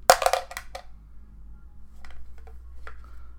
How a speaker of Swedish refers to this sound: Ja. Jag slår tärningen.